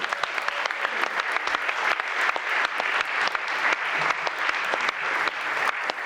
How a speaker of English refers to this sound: I just wanna give them a round of applause if you like the food.